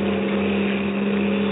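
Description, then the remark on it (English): A car engine drones steadily as the car twists and swerves along a dark, lonely road at the mouth of a canyon, a constant low rumble with a slight hum heard from inside the moving vehicle, with no voices. “The car twisted and swerved.”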